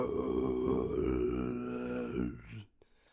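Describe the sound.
A voice imitates a female monster's death screech: one long, strained, gravelly cry held for about two and a half seconds, rough and harmonic-rich, that cuts off abruptly into near silence.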